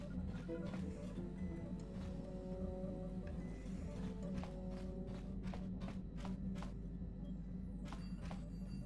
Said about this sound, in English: So it said footsteps coming from the direction of the cargo hold.